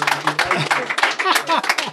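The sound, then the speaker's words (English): An audience at a whiskey tasting claps in a brief, scattered burst of overlapping handclaps to show they like the whiskey, mixed with murmuring voices and a few cheers throughout the two seconds. “What do you all think? You all like it? Clap.”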